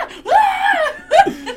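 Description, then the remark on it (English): A man lets out a loud, sustained wordless scream lasting about a second, then a shorter strained yell, a voice imitating a scream rather than genuine terror. “Frank grabbed the shoulders of that little girl and screamed right in her face”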